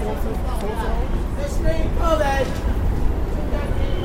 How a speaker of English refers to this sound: Anyways, now, as I enter the old Port Authority bus terminal to get the bus home, you are going to enter a terminal of the perceptual mind.